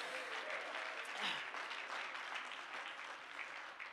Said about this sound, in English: If you believe that, clap your hands unto Jesus tonight.